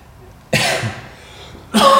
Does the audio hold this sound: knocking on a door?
no